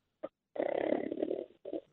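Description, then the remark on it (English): A man in New Jersey snoring, heard over a phone line: a brief snort, then one long, rough, rattling snore, followed by a shorter one. Fairly loud, with a thin telephone quality and no talking. “Nope, still snoring.”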